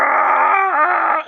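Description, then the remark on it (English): A human voice imitates an inarticulate scream: one loud, sustained, wordless cry that holds a steady pitch, dips briefly in the middle, then cuts off after about a second. “an inarticulate scream.”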